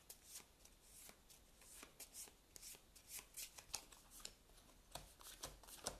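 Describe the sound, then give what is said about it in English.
A deck of cards is shuffled, a steady run of crisp papery riffles and slaps repeating for several seconds, fairly quiet with no voices. Five location cards from a card game are being shuffled together into a small deck. “I'm shuffling the Steps of Yoth into that.”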